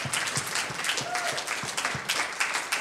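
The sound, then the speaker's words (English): A church audience applauds steadily in praise of God during a service, many hands clapping in a dense, continuous patter at a moderate level, with faint voices mixed in underneath. “Come on, some of you are clapping like you forgot how good God is.”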